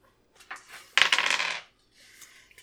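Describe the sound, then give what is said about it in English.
Dice rolled for a routine scrutinize test rattle and clatter across a hard table, a few light clicks leading into a sharp burst of tumbling before settling with faint final taps. No voices. “Her dice do not like her tonight.”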